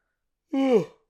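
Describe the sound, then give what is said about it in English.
One short, voiced yawn from a person, a drawn-out vocal sigh that slides downward in pitch and fades after about half a second, with silence around it. “Yawn.”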